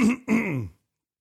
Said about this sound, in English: clear your throat. Get ready.